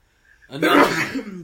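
A single sneeze: a faint intake of breath, then a sudden loud, breathy burst that trails off over about a second.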